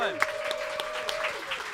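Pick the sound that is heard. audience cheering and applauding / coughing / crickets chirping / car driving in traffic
audience cheering and applauding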